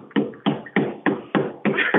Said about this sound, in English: Do you understand when you clap your hand?